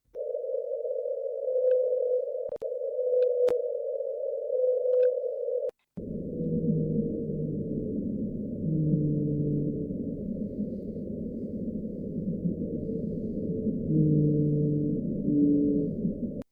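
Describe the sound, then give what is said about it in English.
A recorded deep-ocean call known as the loneliest whale in the world, its source not confirmed to be a whale: a steady, droning low tone with a few sharp clicks, then a rumbling stretch of overlapping, wavering low moans, with no voices. “So we don't know if the noise even belongs to a whale.”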